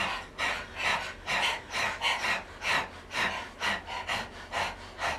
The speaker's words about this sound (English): So if you know Breath of Fire, you can jump right in. And if you're new to the breath, what we're going to do is open the mouth, stick out the tongue, and begin to pant rhythmically, just like a dog.